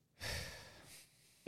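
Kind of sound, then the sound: human body sound, heavy breathing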